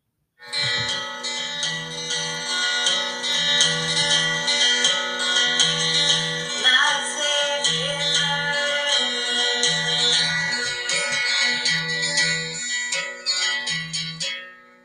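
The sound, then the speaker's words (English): An upbeat instrumental jingle played through a phone speaker, with bright, bell-like melodic tones over a steady, bouncy bass pulse, running for about fourteen seconds without any voices. “It's a murder comedy podcast, so it's like horrific murders, and it's such an upbeat jingle.”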